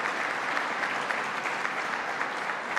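A crowd in Western New York applauds Mayor David Smith and Town Supervisor Charles Snyder as they stand: a dense, even patter of many hands that keeps up at a fairly loud level throughout, with no voices rising above it.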